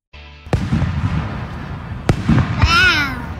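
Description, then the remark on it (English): Two sharp firework bangs pop over a steady outdoor rumble in Knightdale, followed by a two-year-old girl's delighted, drawn-out exclamation of "wow" with a rising and falling pitch. “enjoying fireworks in Knightdale a couple nights ago.”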